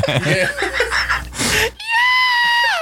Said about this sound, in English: And then he added in the Mortal Kombat scream.